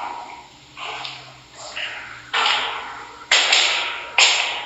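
Footsteps of people climbing stairs: five heavy, evenly spaced thuds, each with a short scuffing tail, growing louder. No voices.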